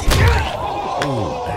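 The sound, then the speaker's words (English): A heavy, dull thud lands at the start, then a second sharp smack is followed by a short, pained vocal cry that slides downward in pitch, like a cartoonish groin-kick effect. “We don't have her name, but she's going to be known as the vegan runner, and she deserves a groin kicking. That deserves this.”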